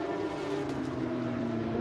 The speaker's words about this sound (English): There is the AO Kelly Moss racing car just coming to the Mission Foods bridge now. Is that black or is it dark green? Hard to tell. It's dark green, isn't it? Fantastic colour in the afternoon sunshine.